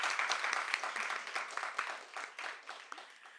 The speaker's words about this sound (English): I think that deserves a more robust round of applause. That was wonderful. Thank you.